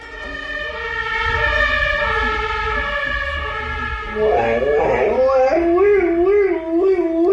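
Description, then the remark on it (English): An emergency vehicle siren in Germany wails loudly and steadily, then a dog joins in with a wavering, rising-and-falling howl that imitates the siren's tone. “Okay, so this dog in Germany hears the siren of an emergency vehicle and then does a pretty good job of imitating it.”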